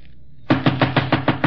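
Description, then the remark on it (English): After a brief quiet moment, a rapid series of about seven firm knocks on a wooden bedroom door, evenly spaced, with no voices. “Then I went to Kinsella's bedroom door.”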